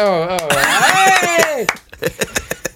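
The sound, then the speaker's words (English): A voice exclaims in a drawn-out, sliding pitch, then a thin, scattered audience applause follows: about eight separate sharp claps at an uneven pace, moderately loud, with no voice over them. “Oh, more bloody applause.”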